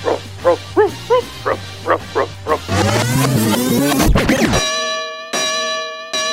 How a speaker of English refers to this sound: Paul's dog. Roof, roof, roof, roof.